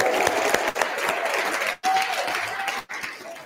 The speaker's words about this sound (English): So please, can you all stand up? Please be upstanding on your feet, and a massive round of applause for Mr. Matt Fiddes!